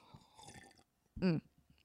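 Someone takes a quiet sip of coffee, a brief soft slurping rustle, then after a short pause a louder voiced swallow or satisfied hum. No one is speaking.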